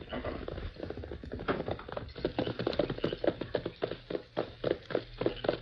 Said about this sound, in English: Now, hurry. Now I can hear those hoofs.